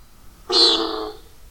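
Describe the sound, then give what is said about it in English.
A lone, low-flying nighthawk's diving boom at dusk as it dives toward the ground: one abrupt, buzzy, horn-like whoosh that starts sharply, holds for under a second, and fades away, heard on its own against faint background hiss. “Could this relatively small bird make such a spooky big noise?”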